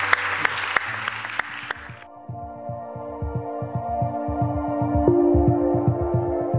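An audience breaks into loud, dense applause for two individuals for about two seconds, which quickly gives way to music with a steady, pulsing low beat and sustained tones.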